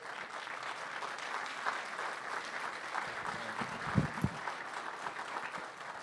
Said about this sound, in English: So if you guys would, if y'all stand one more time and give a big round of applause and welcome